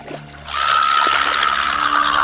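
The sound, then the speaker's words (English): Stream water trickles steadily after a brief quieter moment, a continuous babbling flow with no talking. “My lord, down by the stream.”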